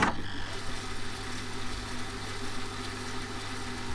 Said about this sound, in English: VHS tapes. Better rewind that before you go back to the video store.